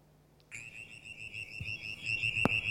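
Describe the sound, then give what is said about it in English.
A brown tree frog, played from a recording on a phone, gives a sustained, high-pitched trilling call that starts abruptly and holds steady, with a sharp click near the end over faint low background noise. “That's a brown tree frog.”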